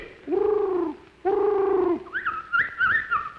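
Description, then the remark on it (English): A person imitates bird calls: two long, steady cooing notes, then a quicker run of higher, warbling whistle-like calls, clear with no other talking. “Them ain't birds.”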